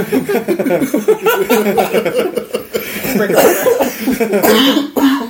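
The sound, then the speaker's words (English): Several people cough in overlapping bursts, with harsh throat-clearing hacks mixed among chuckles and a little laughter, the fits continuing loudly throughout. “We're all coughing up this.”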